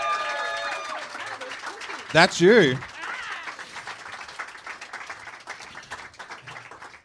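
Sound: audience applause and cheering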